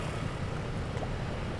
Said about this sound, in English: freight tugboats that chug up and down the Huangpo River,